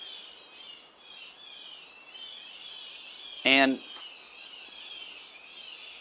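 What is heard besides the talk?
birds chirping outdoors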